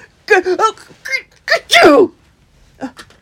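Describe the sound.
A voice acts out a sneeze caused by dust from sweeping getting into the eyes and throat, with several quick breathy build-up sounds leading to one loud burst, then a brief faint sound after a pause.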